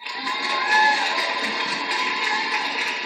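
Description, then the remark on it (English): A steady wash of audience applause and cheering that holds at an even, loud level for about three seconds, with a few higher whoops cutting through the dense clapping. “Round of applause.”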